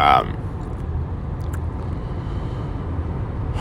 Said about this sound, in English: I'm in the car on I-95 somewhere in North Carolina. I'm not exactly sure.